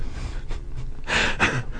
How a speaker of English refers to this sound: Two gasps.